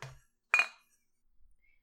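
Glasses clink together in a toast: a soft knock, then a bright ringing clink that fades quickly into near silence. Nobody speaks.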